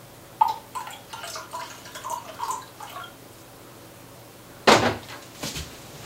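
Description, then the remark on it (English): Water is poured into a measuring container in short, splashy glugs and drips, moderately loud, to bring the level up to 475, followed by a sharp clunk as something is set down, then a softer knock. “So let's pour a bit of water in here to get this up to 475.”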